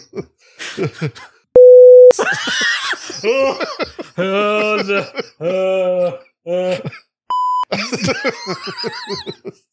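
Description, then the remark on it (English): Speech is cut twice by loud, steady censor beeps, a lower-pitched one lasting about half a second and a shorter, higher one later, with talking and vocal sounds around them. “Yeah, just make it beep when I say it.”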